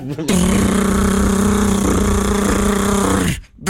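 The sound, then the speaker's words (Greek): A loud, steady mechanical drone of a compressor running, a constant buzzing hum for about three seconds before it abruptly cuts off. “Σαν κομπρεσέρ κάνει. Μπράβο!”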